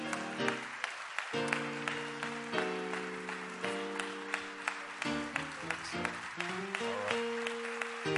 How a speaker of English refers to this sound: Come on, let's give Jesus a hand clap of praise this morning. He's worthy of the praise, worthy of the glory.